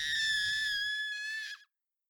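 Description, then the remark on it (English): A shrill, piercing scream holds at a high pitch for about a second and a half, loud, over a brief low rumble before it cuts off abruptly. “Frantic screams fill the air.”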